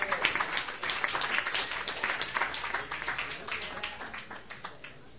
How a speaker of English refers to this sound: this round of applause is for you!